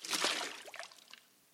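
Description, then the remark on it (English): A short burst of water pouring and splashing, bright and hissy at first, then thinning into a lighter trickle that fades out within about a second and a half. “Did you hear that? Love that sound, water.”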